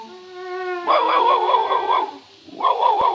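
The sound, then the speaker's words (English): A dog yelps and howls in two long, wavering bursts with a brief pause between them, preceded by a steady, sustained tone. “Well, send that dog away. It has no ear for music. It's barking in the wrong key.”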